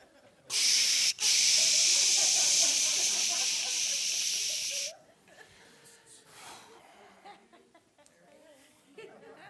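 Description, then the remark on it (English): A loud, steady spray hiss from a decontamination station at the entrance door runs for about four seconds with a brief break near the start, then cuts off, followed by quieter background voices and murmuring. “Some of you, it's a decontamination station. That's why you heard those things when you came through the door.”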